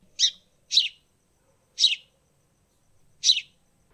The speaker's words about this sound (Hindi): नन्ही चिड़िया ने अपना छोटा सा सिर हिलाया और कहा, ची।